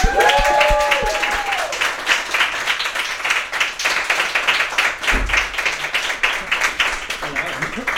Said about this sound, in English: So can we please give a huge round of applause